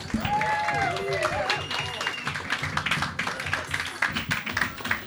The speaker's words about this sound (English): Keep it going for Maya Angelou. Big round of applause for Lucille Ball.